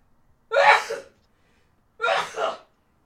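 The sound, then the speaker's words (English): Two loud sneezes from a person about a second and a half apart, each a sharp breathy burst with a quick intake before it. “I'm going to sneeze. Here we go.”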